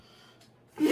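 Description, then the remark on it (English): A single sudden sneeze bursts out loudly after a quiet moment, a sharp, breathy explosion of noise with no talking around it. “Bless you.”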